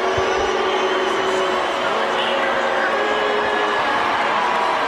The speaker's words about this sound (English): But the story of the game is that Joe Biden decided to show up, and he was not well received by the crowd.